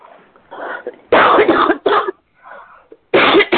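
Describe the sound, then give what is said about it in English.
A loud fit of sudden coughing: several harsh bursts with throat clearing and sharp breaths between them, ending in one more forceful cough. “Excuse me, I didn't expect that cough to come on so quickly.”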